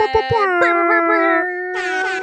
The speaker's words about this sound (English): Can we get an air horn on that?